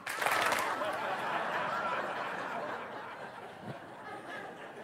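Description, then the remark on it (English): A large audience slaps their hands together at once on a count of three, a loud burst of dense clapping that quickly thins and fades, mixed with scattered chuckles and murmuring. “Then I'd like to get you just to slap your hands, okay?”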